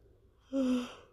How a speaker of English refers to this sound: I'm recording this at 2 p.m. and I just yawned.